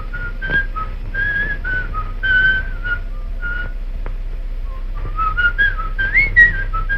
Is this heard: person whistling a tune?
yes